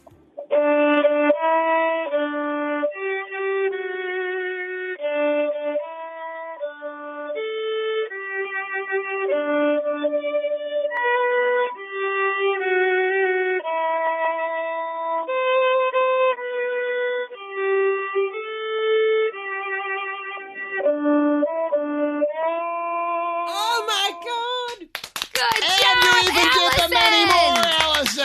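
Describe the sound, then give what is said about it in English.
A solo violin plays a live rendition of Happy Birthday in honor of a singer on the Mix, at the side of the road on the way to school: a flowing melody of sustained, singing notes for over twenty seconds, then a loud burst of clapping and cheering takes over at the end. “a rendition of Happy Birthday in honor of … on the violin live on the Mix? I can do that.”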